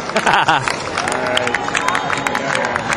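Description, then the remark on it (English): A festival crowd waiting for the singer, 20 minutes late at 9:20, to take the stage claps unevenly amid a loud wash of voices and cheering, the scattered claps forming no steady rhythm over three seconds. “Now people are starting to clap, as you probably hear in the background.”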